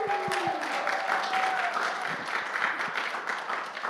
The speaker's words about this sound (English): So if you guys can give her a warm round of applause.